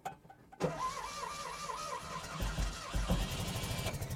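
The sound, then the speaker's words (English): A classic Fiat 500's cable-driven pull starter, with no starter solenoid, cranks the engine in a steady, whirring rhythm with a brief mechanical clunk at the start and no voices; the ignition is on, the gas has been pumped, and the car has sat unused for months. “Pull it up another click, this little metal rod drops into place, and that's actually what starts the car.”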